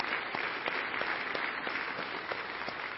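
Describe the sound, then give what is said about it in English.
A crowd claps together in a sustained burst of applause as a hand clap of praise to the Lord, dense and steady, with a few sharper individual claps standing out, moderately loud. “Give the Lord a hand clap of praise for that truth.”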